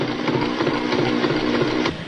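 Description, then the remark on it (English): A sewing machine runs steadily, stitching a Talon Invisible Zipper with a Talon zipper foot, with a continuous mechanical whir and a fast, even rattle of the needle, fairly loud and without any voices. “You can install the Invisible Zipper easily with Talon's incredible new zipper foot.”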